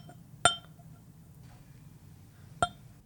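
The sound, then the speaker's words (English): Two bright, ringing clinks of glassware as drams of Glenglassa whisky are poured for two, spaced about two seconds apart over a faint low hum, each with a short shimmering decay and no talking. “And I'll just pour a dram for us both, and then I can introduce you to it.”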